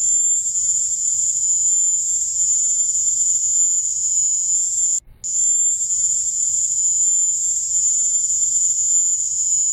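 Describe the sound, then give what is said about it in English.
A loud, piercing, steady high-pitched electronic-like drone of insect chirping, continuous and unbroken except for one brief dropout midway, with a faint low rumble beneath. “it's actually identical to the mating sound of crickets who are native to the Caribbean”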